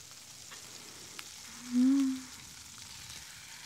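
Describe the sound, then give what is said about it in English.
Chicken covered in a spice and flour blend sizzles in a pan as it cooks on both sides, with a steady, soft crackling hiss, interrupted midway by a brief, low, hollow squeal lasting about half a second. “So we cover it in and then cook our chicken on both sides until done.”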